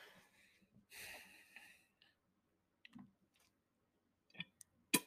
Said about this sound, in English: Oh, sorry, I had to put a chew in.